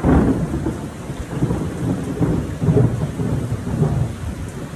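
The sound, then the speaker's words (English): Steady rain hisses throughout a thunderstorm while deep thunder rolls and rumbles underneath, swelling in waves across the few seconds. No voices, just the sustained wash of the storm. “One of the things about grilling in Texas is you sometimes, it'll be, it is officially July 1st, and due to the rainstorm, okay, it's not July 1st.”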